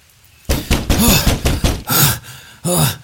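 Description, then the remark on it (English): A fist pounds hard on a wooden cabin door in dense woodland at night, struck by a man who has just arrived running, in a rapid, uneven series of heavy thuds, loud, with a short pause before a final burst of blows. “arrives at a cabin and begins pounding on the door.”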